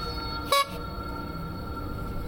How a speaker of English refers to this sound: The clown honked the horn twice.